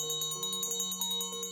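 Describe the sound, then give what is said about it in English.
A handbell, taken from a bedside table, shaken hard and fast to call a maid, its clapper striking in a rapid, steady rattle while bright ringing tones hang on between strikes. Fairly loud, with no voices. “taking the bell from his bedside table, he rings it violently to call the maid, filling the room with its peals.”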